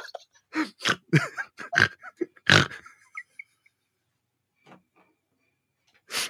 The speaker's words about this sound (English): Once I sniff one, snort once, I can't stop.